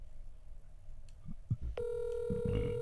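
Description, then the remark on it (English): After a moment of low handling noise, a steady electronic phone ringback tone starts and holds for the last second, clear and fairly loud, from a handset placing an outgoing call to add someone to the line. “Okay, it is calling.”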